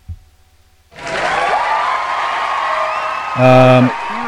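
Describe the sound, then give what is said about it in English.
A huge crowd cheering and shouting bursts in after a short quiet moment and holds steady for about three seconds, with a brief loud, steady blaring tone rising over it near the end. “Huge crowd.”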